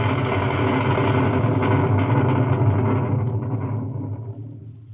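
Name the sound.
storm at sea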